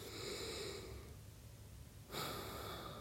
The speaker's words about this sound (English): So as I breathe, I hope intuitively when I breathe and I pause for that breath that you will come with me and just, you know, kind of like follow along with that.